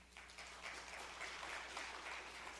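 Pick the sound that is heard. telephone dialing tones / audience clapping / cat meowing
audience clapping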